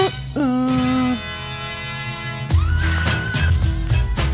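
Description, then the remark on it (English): A drawn-out, wavering horse whinny rings out in the background of a song's music track, followed by a heavy, thumping beat that kicks in loudly halfway through. “I like the horse in the background.”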